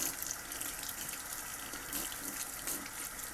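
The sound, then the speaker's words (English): Water runs steadily from a tap to water a small orchid houseplant, a continuous hissing splash with no pauses, filling a container for a few seconds with no voices. “So, I am going to water my little plant.”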